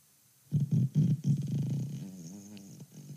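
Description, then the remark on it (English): A fart sound effect played by an Alexa device that sputters through a few quick, loud low bursts before settling into a steady, wavering buzzy rumble, like an engine turning over and catching, then it trails off. “That was an engine starting one.”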